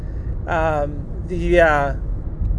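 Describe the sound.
A steady low rumble of road noise from inside a moving Nissan Note, a small car, continuous throughout, with a person's voice making two short voiced sounds over it.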